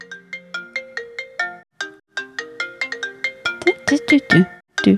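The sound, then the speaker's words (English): A melodic phone ringtone, used for a Taskmaster task, plays a quick run of bright, electronic notes in a repeating pattern, clear, growing busier and louder toward the end. “You know, it's a good thing that I didn't change the ringtone after I did part one of that, because there is always a part two in Taskmaster.”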